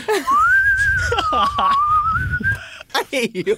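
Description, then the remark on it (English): Several people whistle a tune together; it rises, holds and drifts down over about two seconds while voices chatter and laugh underneath, followed by short bursts of talking. “I hate you because we cannot harmonize that whistle.”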